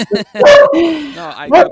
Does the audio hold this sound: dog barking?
yes